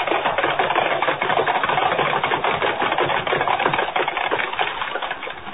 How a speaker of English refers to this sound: Thundering hoofbeats echo through the crowd-lined street as the six white horses, suddenly gone wild, carry the swaying silver carriage to almost certain doom, while the thousands of people who only a moment ago were cheering wildly look on aghast.